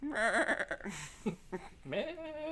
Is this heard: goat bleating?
yes